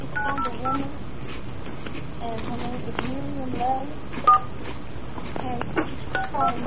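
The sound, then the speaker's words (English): A few short touch-tone keypad beeps entering a PIN for a Phone Card Network calling card, sounding over a phone line alongside a voice that talks throughout. “Please enter your PIN number.”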